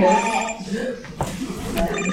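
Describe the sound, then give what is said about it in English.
A phone left in a car rings with a steady, tonal electronic ringtone that plays continuously at moderate volume, with a brief voice-like sound partway through. “Can y'all hear my phone ringing?”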